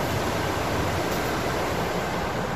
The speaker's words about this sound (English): And the sound of the water rippling down along here is just as nice as well. So it all adds to the peace and tranquility of the area.